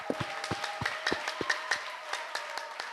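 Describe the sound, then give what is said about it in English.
An audience claps together in a steady, fairly quick rhythm on the 18th day of a crusade, sharp moderate claps repeating over a faint sustained tonal hum, with no voices. “Clap, clap, clap, clap.”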